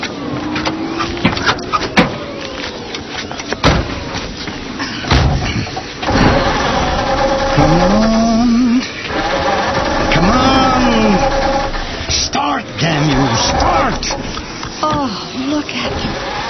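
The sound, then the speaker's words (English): A few sharp thuds like a truck door slamming shut, followed by the truck's engine repeatedly cranking and whining as it struggles and fails to start, having been flooded, loud. “I've flooded it now.”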